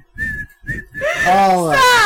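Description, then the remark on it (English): A person whistles a short, steady tune, with low thumping underneath, then slides into a loud, wavering voiced note that carries the melody on. “Let me tell you, If I can make six figures annually, make six figures annually, I'd be whistling y'all a song right now.”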